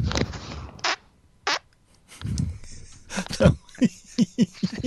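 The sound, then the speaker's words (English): A fart comes as two short, squeaky bursts in quick succession after a rustling opening, then people begin talking and laughing. “That was just a double squeaker.”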